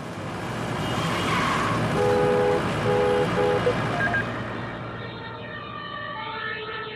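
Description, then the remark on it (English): A siren from an emergency vehicle wails over steady road traffic noise, its repeating tones fairly loud and shifting in pitch as the vehicle passes, with no one speaking. “We built up artificial intelligence that is able to detect such sirens in any acoustic signal.”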